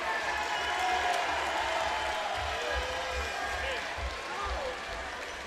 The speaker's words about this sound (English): And the applause you hear, Ian Kleinhexel and Quentin Van Lente are coming into the ball game.